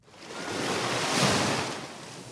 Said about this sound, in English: For this one, let's go to the beach for a 1 minute and 4 second vacation on Nantucket Island.